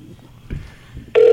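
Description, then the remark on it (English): A loud electronic phone tone abruptly starts near the end, a call ringing out on the line while waiting for someone to pick up, following a stretch of quiet, muffled rumbling. “I want him to pick up the phone.”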